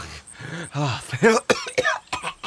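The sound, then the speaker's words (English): A voice imitates a cat hacking up a golden hairball during a Dungeons and Dragons game: a strained series of gagging coughs and retching groans that rise and fall in pitch, ending in a few short, sharp bursts. “Vince coughs up a golden hairball. I just realized this is what that was.”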